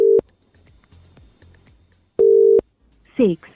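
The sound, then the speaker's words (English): An outgoing phone call's ringing tone, placed from a private number: a steady electronic tone sounds in short bursts separated by a long pause, with quiet background noise and a brief voice at the end. “I'm going to try and call him again, and let's see if he answers.”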